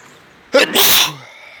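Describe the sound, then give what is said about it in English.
A single loud human sneeze bursts out, a sharp intake snapping into a bright, breathy blast that lasts about half a second before fading into quiet. “Yeah, that was a pretty loud sneeze.”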